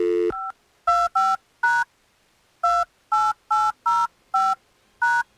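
A quick series of about ten electronic touch-tone beeps as a phone number is punched in to place a call on the radio show The Miguel Show on Hot 101.5. Each short dual-pitched tone is clear, with a brief pause partway through and no talking.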